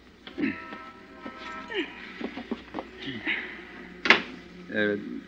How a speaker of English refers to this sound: I don't think your door's closed tight, honey.